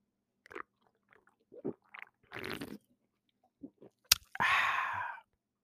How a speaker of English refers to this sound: Look, I'm going to give y'all some, because right now I'm drinking me some, but it's late, but I'm drinking me some cold beer right now. Let me do a sound.